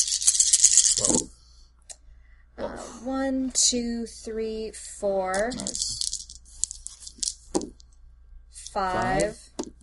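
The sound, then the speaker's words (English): Dice rattle and tumble in a brief, noisy burst lasting about a second, followed by short voiced sounds and a few scattered clicks. “All right, give me 5 so dice. 5 extra dice for you.”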